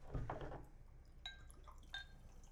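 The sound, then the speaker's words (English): Root beer is poured into a glass in a short, soft rush of liquid, followed by faint scattered pops and tinkling bubbles as the fizz settles. No one speaks. “Ooh, good fizz.”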